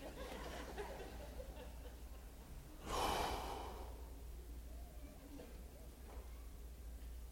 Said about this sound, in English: First of all, breathe. Let's take a deep breath. You ready? Ready? Come on. Now, I mean, really take a good one.